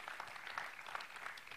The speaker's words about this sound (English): Let's give God a clap. Woo!